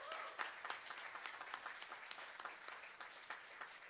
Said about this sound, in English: Give them a round of applause right there.